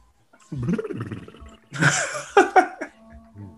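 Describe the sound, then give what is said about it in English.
A wet slurp and throaty gargling sound of someone taking a sip of white Hennessy, followed by a raspy, growling exhale, with no speech. “You know, I got a little white Hennessy here I'm going to take a sip of.”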